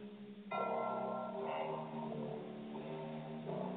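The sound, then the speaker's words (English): Ominous soundtrack music from the film Omen, with ringing bell tones, swells in after a brief quieter opening, then holds steady and full, layered sustained notes droning throughout with no voices. “Okay, for those of you who are like, what's the freaking Venus playing? That's from the movie Hakuna The Matata.”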